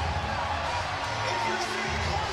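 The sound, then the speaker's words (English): A large arena crowd at a Raptors vs Cleveland basketball game, standing with 12.8 seconds to go, roars and cheers steadily, urging the Raptors on defense: a dense, unbroken wall of voices at constant loudness, with a faint murmur of talk mixed into the din. “Crowd standing.”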